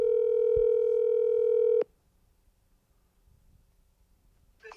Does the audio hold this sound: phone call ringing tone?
yes